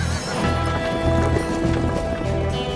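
A horse's hooves clip-clop in a steady rhythm while the animal whinnies over the top, the sounds fairly loud and continuous throughout.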